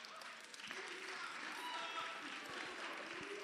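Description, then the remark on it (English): An audience in a church claps together in a dense, steady stream of applause that holds an even loudness throughout, with faint voices blending into the crackling wash of hands. “As you are clapping, I think if you are clapping, clap.”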